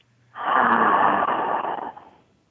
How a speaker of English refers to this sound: Okay, and just breathing in and out, breathing in and out, breathing in and out,